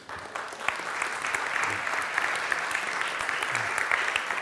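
An audience claps together in sustained, even applause that fills the room, a dense patter of many hands continuing steadily for several seconds with no one speaking over it.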